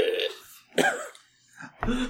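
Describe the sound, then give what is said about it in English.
Three loud, guttural burps from a dragon in quick succession, each a short rumbling belch with a raspy edge, with no talking. “I think a dragon burps at that point in time.”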